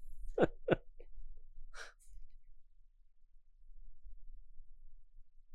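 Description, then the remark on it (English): Two sharp sneezes in quick succession, fairly loud, followed by a short breathy exhale, then near silence with faint background noise. “God bless you.”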